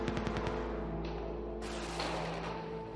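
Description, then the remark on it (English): A rapid burst of gunfire cracks out around buildings during a terrorist attack near the Taj, several sharp shots in quick succession, then fades into a rumbling, noisy background with a steady low drone. “Throughout the day, gunfire and explosions have crackled around the buildings at the centre of what is basically a battle.”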